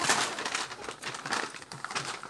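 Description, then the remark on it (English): Continuous crinkling and rustling of wrapping paper as a gift is unwrapped, with irregular crackly bursts as the paper is handled and torn open, moderately loud with no talking. “Oh, is there stuff in the paper? I don't know. Look.”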